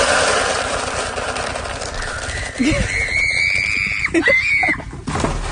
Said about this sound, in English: This woman is screaming because she knows she's in trouble. The screaming's the best. Horse makes an abrupt stop. Woman gets thrown off the horse and into the water trough.